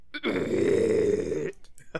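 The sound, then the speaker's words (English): A person imitates a big mosquito creature's burp with their voice: a long, loud, throaty, sustained low rumbling belch lasting over a second, followed by a few faint breathy bits. “And he looks at you and he gives a big burp. And it's a big bloody mosquito burp.”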